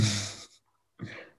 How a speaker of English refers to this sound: So, you know, that I'm, pardon me if you hear me yawning.